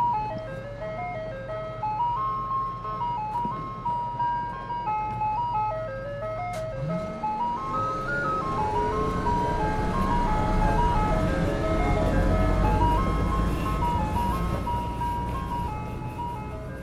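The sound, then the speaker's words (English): A tinkly ice cream truck jingle loops steadily while the truck's engine idles low underneath after Bert Cannon starts it up, then revs up around seven seconds and rumbles louder as the melody keeps playing. “And so, Bert Cannon returned to his ice cream truck and started up the engine. He smiled slightly as the engine roared to life.”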